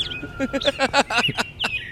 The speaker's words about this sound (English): The sun's coming up. The birds are chirping. Chirp, chirp.